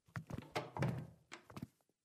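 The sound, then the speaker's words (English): A door shuts with a cluster of dull, heavy thunks and clunks over about two seconds, the last ones softer as it settles closed. No one speaks. “Close the door.”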